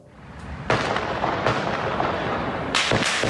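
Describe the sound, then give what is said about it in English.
Heavy gunfire crackles in loud, sharp bursts that run together into a sustained roar, with fresh volleys breaking out partway through and echoing off surrounding buildings, on the streets of Vienna, Austria, during a terror attack by multiple assailants. No one speaks. “Heavy gunfire rang out on the streets of Vienna in what the Austrian chancellor called a repulsive terror attack, a coordinated assault by multiple assailants not far from the city's main synagogue, six different locations.”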